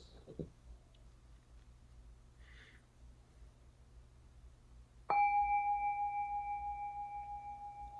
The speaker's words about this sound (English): Imagine the big bells being rung.